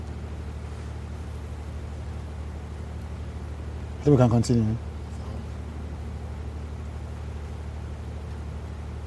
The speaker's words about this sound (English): The helicopter's always moving above here.